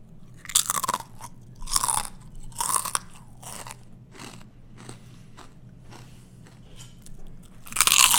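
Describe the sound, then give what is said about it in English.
Loud, crisp crunching of two Stacy's pita chips being bitten and chewed, with bright crackly bursts repeating roughly once a second, then quieter chewing, and a final loud crunch at the end. “Really? Two chips? You need two?”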